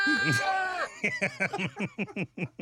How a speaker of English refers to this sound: So before the show, I got all these goat sound effects. Yes, and we love goats. We love goats.